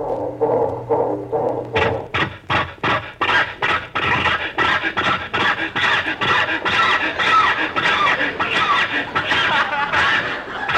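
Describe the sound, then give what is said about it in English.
A car starter cranks over and over in a steady, rapid rhythm, grinding and sputtering without catching, loud, as people try to start the car after 20 minutes of failing; it sounds like a voice imitating the struggling engine. “Oh, Jack, we've been trying to start the car for 20 minutes.”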